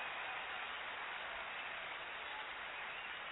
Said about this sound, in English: We're the first, and you are the first. Let me give you a round of applause for that.